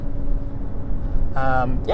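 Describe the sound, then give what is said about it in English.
A steady, low rumble of a car cabin while driving fills the whole stretch, with a brief burst of a man talking in the car near the end over the engine drone. “So this episode here, there's no intro music, there's no outro music, just me talking in the car.”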